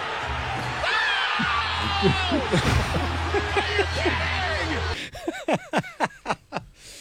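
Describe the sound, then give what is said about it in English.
A noisy crowd roars, then a man screams at the top of his lungs in a rapid string of about six loud, strained bursts. “and he's just screaming at the top of his lungs.”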